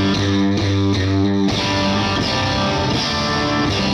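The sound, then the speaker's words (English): A heavily overdriven electric guitar blares through an amp turned up to 10 with the top boost, loud, with fizzy, hissing distortion smearing across a few strummed chords that sustain and change every half second or so. “This is not an amp you want to put on 10 with the top boost. Right. So as an example, I'll put it on 10 and it's going to just hiss and kind of...”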